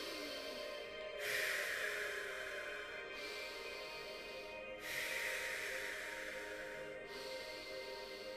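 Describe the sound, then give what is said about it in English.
Rapid, steady breathing during an active breathing exercise: airy inhales through the nose, filling the belly, alternate with whooshing exhales through the mouth, about four full cycles with no pause between them. “Fully breathing in through the nose all the way up and releasing through the mouth all the way out.”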